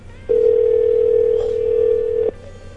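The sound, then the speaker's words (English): A single steady telephone ringback tone plays over the line for about two seconds, a clear continuous hum-like buzz heard through a phone connection, then cuts off abruptly. No one speaks. “It's ringing. It's still ringing.”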